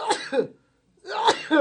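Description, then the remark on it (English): Two sharp, explosive sneezes, each a loud burst of breath with a brief gap of silence between them. “Bless you. Thank you.”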